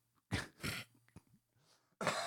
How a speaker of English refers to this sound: Sorry about my horrible British accent. It's so bad it made you cough. So, it was a shame cough.